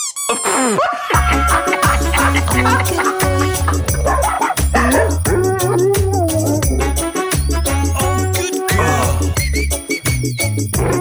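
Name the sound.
dog barking and whimpering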